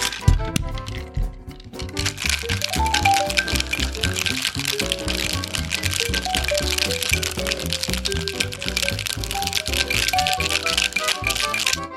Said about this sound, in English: Okay, and finally, we add ice to the shaker. And give it a good shake.